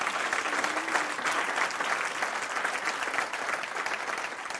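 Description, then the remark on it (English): A church audience claps their hands at the preacher's call in sustained, steady applause, a dense crackle of many hands at even loudness throughout, with no clear voices rising above it. “Now clap your hands like you know what I'm talking about.”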